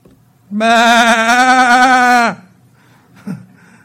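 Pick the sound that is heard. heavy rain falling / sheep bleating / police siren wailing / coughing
sheep bleating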